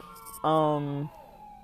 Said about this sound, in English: Yeah, we're gonna get the full force of all the sirens while I'm outside.